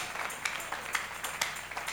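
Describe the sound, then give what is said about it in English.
A church audience clapping for Jesus as a clap offering, in a dense, steady patter, with a few sharper claps standing out at a rough regular beat. The applause is moderately soft, with no voices over it. “Give Jesus a clap offering in the house of God.”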